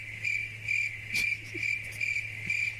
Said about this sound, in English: Crickets. Crickets.